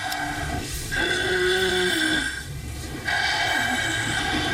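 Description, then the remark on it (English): Loud, rasping snoring from obstructive sleep apnea, with several harsh breaths in a row, one carrying a buzzing, fluttering tone, separated by brief quiet pauses. “Obstructive sleep apnea may sound like snoring, but it can also sound like a car crash.”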